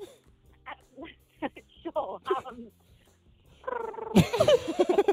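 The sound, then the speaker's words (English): A person speaks briefly, then breaks into a loud, drawn-out imitation of a cat's meow with wavering, whiny pitch, imitating Professor McGonagall in cat form. “could you give cat form a go?”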